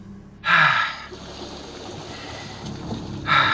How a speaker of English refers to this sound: I manage to surface, gasping for air.